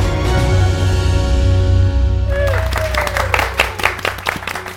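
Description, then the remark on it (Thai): A burst of crowd applause and cheering breaks out midway, dense clapping rising over a steady tonal hum that fills the opening seconds, then continuing loudly to the end. “เป็นเชียร์ลีดเดอร์ที่มีเสียงเฮฮาครื้นเครงกว่าทุกครั้งมากเพราะทุกที่เรานั่งคุยกัน2คนเหงาๆ”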